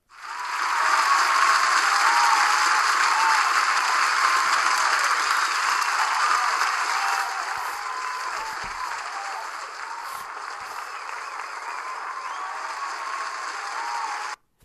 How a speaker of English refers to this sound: Okay, that's it for this song. Let's give you an applause.